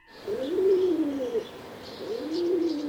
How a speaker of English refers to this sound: I was in the backyard with the pigeons.